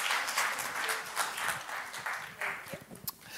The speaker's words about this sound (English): Hey, can we give them a round of applause?